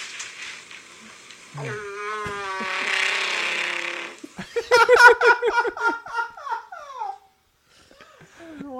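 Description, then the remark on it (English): A long, loud fart with a warbling, growly, roar-like tone likened to a Chewbacca Wookiee roar from Star Wars, coming in two drawn-out, pulsing bursts before cutting off, followed by a faint trailing squeak. “Yeah, Star Wars real life Chewbacca Wookiee fart.”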